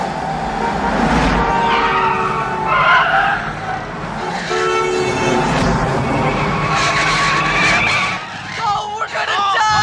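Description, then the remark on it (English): A car skids out of control loudly with sustained tire squeal and engine noise over nearly ten seconds, chaotic, with people shouting over it. “I told you this was gonna happen! Shit! Oh! Les, stop the car!”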